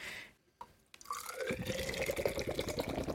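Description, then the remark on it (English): A short can hiss, then a vigorous pour of stout beer from a can gushing and glugging into a glass, loud, with a rising fill sound and foamy splashing. “Pour vigorously. 180 degree pour.”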